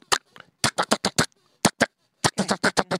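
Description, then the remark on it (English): A voice imitates M16 rifle fire with sharp, staccato mouth bursts in three quick volleys, about a dozen shots in all, loud and rapid, with brief pauses between the volleys. “Can you do an M16? Well, M16 is a little bit more staccato, so it's.”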